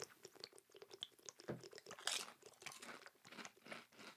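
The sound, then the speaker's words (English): Loud crunching of chips being chewed, a rapid stream of crisp, crackling bites over about four seconds, with no talking. “I'm going to make everyone listen to me crunch on three more chips.”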